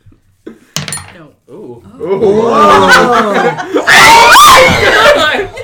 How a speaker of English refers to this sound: For those of you who are listening to this on podcast, the die just hit a glass and spun for a good 3 seconds before it settled on 20. That was a magical 20.